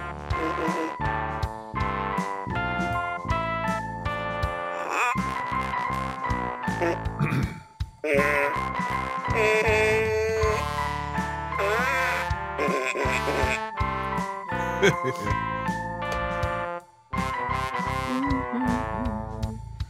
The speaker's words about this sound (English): I found a whole new treasure trove of toots to work with, too, so I'm excited